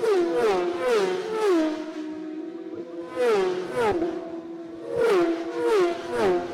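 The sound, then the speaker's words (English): Road-racing motorcycles ridden by Dean Harrison, Michael Dunlop (number 3), Jamie Cowart (number 36) and Rob Hodson (number 44) scream past one after another, about six passes in quick bursts, each high-revving whine dropping sharply in pitch as it goes by. No voices, just the buzzing engines. “Sounds like a swarm of angry wasps going through here, but it is Dean Harrison that's made the break”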